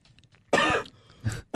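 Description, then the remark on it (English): A loud cough burst followed by a shorter throat-clearing rasp and the start of another cough, all within a second and a half, with no talking. “I couldn't cough 2 minutes ago.”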